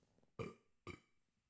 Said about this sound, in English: I got a burp.